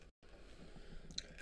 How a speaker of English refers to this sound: My throat is actually a bit shagged out still. That's why I'm absolutely crunching through these soothers.